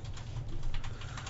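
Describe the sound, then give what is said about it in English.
Fairly quiet, rapid typing on a computer keyboard, a steady patter of small key clicks over a low background hum, with no voices. “Can you type any louder? That's the keyboard.”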